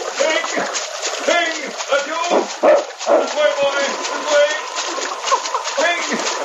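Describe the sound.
A dog barks and yelps amid continuous splashing and churning water as it leaps a rail and plunges into swirling, icy river water, with voices talking over the commotion throughout.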